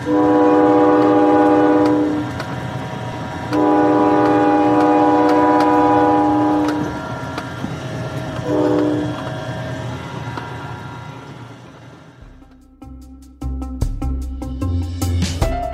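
A train horn sounds two long, loud blasts and a short third one over a steady rumble, then the wheels clatter rhythmically along the track as the train rolls past.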